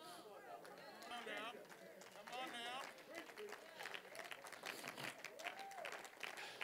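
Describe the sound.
Scattered, uneven audience clapping that never builds into full applause, mixed with murmuring voices and a few drawn-out vocal calls from the crowd.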